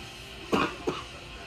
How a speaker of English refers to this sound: It's making me cough.